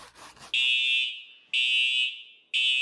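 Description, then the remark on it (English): A school fire alarm blares in loud, shrill electronic pulses, three long blasts about one second apart, piercing with no voices over it. “Everybody goes outside when we hear the fire alarm.”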